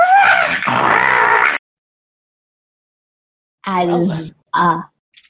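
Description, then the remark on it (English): A person imitates a monster's screech, a harsh, strained vocal cry lasting about a second and a half. After a silent pause, two shorter, lower guttural bursts follow. “I was trying to make a screech.”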